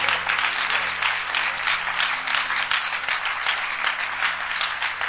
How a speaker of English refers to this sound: Clap your hands for Jesus, especially. Clap your hands for Jesus. Is that the clap for Jesus or?